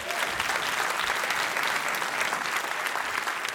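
An audience breaks into steady, dense applause for this week's winner, drawn from a hat, many hands clapping together at a constant loud level for a few seconds with no voices standing out.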